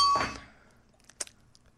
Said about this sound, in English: It dingled funny. Yeah, because it keeps on sticking. You need to stop doing whatever you do with the bell.